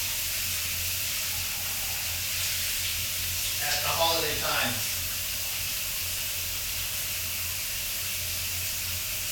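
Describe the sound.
Shower water sprays in a steady, hissing rush that holds even for the whole stretch, while a voice briefly says a few words partway through.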